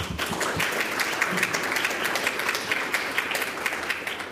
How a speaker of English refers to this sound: Ladies and gentlemen, a nice warm round of applause